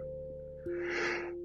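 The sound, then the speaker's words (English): A breathy yawn: a drawn-out airy exhale swelling for about a second, heard over a steady low electrical hum with no talking. “Oh my God, I'm yawning.”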